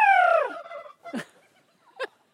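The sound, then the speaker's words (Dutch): A turkey cock on a cold day lets out a loud, rapid gobble that descends in pitch, followed by two short, sharp calls a moment apart, with no talking. “Dat is een kalkoenhaan.”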